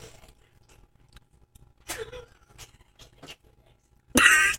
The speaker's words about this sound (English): Okay, she needed to blow her nose. Sorry, everyone.